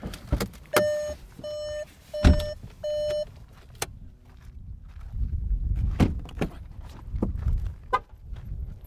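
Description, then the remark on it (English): Three short electronic car chimes sound, then a car door thuds shut as people get out of the car and footsteps crunch away on a hard surface, with a few sharp knocks and some rustling. “If we were to get out of this car, I would say if we get out of this car, nothing is going to happen.”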